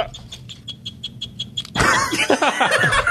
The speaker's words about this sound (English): It's gotten worse, everybody. It's ticking. Okay, now it's a cricket that only knows one note.